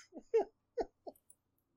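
A voice on a call breaks up into a few clipped, garbled fragments separated by abrupt gaps, then the audio cuts out into silence, like a connection freezing and dropping.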